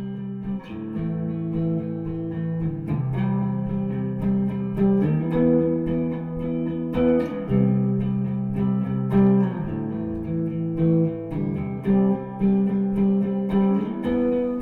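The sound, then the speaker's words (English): A clean electric guitar, a Jag played through a pedal board, plays sustained chords drenched in heavy reverb, each change ringing out and blending into the next at a steady, moderate volume with no voices. “A clean one with a ton of reverb probably, and yeah, so I'm going to throw this into the mix and see how it goes.”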